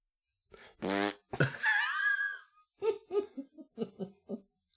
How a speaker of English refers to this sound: Keep it simple. Fart.